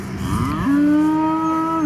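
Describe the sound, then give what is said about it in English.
A single cow moos loudly on a huge unfenced farm in Lebanon, Tennessee, among goats, donkeys and sheep, a steady low drawn-out call lasting over a second, with no talking around it. “Huge farm, cows, goats, donkeys, sheep. They're all kind of milling around.”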